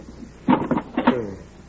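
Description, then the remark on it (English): A kit lid is opened to get chalk out, with a short creaking, rattling scrape lasting under a second. “Wait till I get some chalk out of this kit.”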